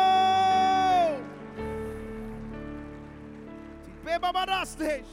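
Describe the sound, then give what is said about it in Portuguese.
An audience claps steadily, applauding again as a shout to the Lord, a dense continuous patter beneath sustained organ-like tones, with a voice calling out in short rising bursts near the end. “Dê um brado ao Senhor e aplaudam novamente, adoro.”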